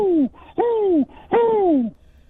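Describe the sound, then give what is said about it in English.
A person imitates an owl with three loud, close hoots, each a falling, drawn-out "hoo" with short gaps between, the last one longest, then quiet. “I'm the angry owl.”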